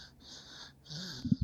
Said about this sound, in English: I don't know if you can hear, but I've got a little snoring baby resting on me.